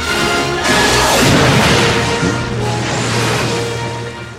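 A loud, booming blast from a rudimentary gun cannon firing a granite projectile in the animated Disney film Mulan, with a sharp onset, followed by a long rumbling, crackling tail that slowly fades over several seconds, with no voices present.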